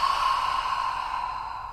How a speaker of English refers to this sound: Do a deep cleansing breath in through the nose and letting it out through the mouth.